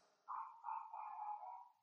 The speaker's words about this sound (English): You hear my Hazel? Yeah, I do. I can hear your dog. That's all right. That's my little Hazel.